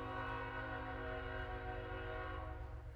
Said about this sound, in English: I'm going to wait for the train because this is so important, right?